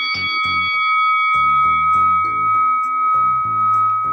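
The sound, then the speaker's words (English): A bell rings with a bright, sustained metallic tone that hangs over the whole stretch, while low rhythmic chord-like thumps pulse underneath at a steady, fairly loud level. “Let me ring the bell one more”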